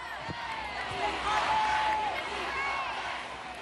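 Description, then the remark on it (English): A large stadium crowd chants in unison at a New York City ceremony honoring the team's players and coaches, as U.S. Soccer president Carlos Cordero gets up to speak; a dense, steady roar of many voices with sustained sung tones rising above it, staying loud throughout alongside scattered whoops. “But before he even starts, the crowd erupts in a chant.”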